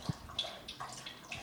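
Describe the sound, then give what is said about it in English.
A dog laps water from a bowl, with quick, wet splashy licks repeating steadily at a soft volume and no talking over it. “she's just drinking because she finished her treat already.”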